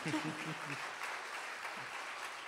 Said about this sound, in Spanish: Quiero preguntar, bueno, si van a aplaudir, vamos, aplaudan.